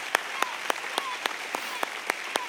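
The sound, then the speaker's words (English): An audience claps hands in a steady, even rhythm, about nine crisp sharp claps in quick succession over a faint background hum, with no talking. “Come on, come on, just clap your hands for a moment.”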